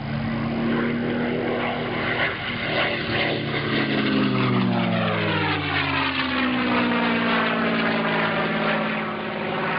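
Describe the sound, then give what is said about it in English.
A propeller aircraft's Merlin piston engine roars overhead, loud and steady, its harmonic drone bending downward in pitch as the plane passes by. No voices. “I don't know of anybody that doesn't go slightly gooey when you hear the roar of a Merlin engine overhead.”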